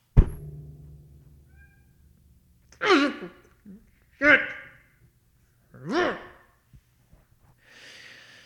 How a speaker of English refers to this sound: And my cat is screaming behind the door. I'm going to go kill it. Hold on.